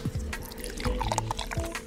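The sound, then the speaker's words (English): Steady, burbling gurgles of air blown through a straw into milk in a bubble race to reach the top first, a busy stream of small popping bubbles that continues without pause, fairly loud and with no talking. “There was 5 of us, so we would all 5 like have a half a glass of milk, and then you'd bubble race it and try to be the first one to reach the top.”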